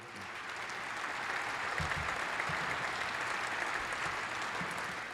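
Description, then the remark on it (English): Sustained audience applause for students of the AP government class at Seneca Valley High, a dense wash of many hands clapping at a steady, even loudness for several seconds with no voices breaking through. “Let's, why don't y'all stand up and give these young people a round of applause, please.”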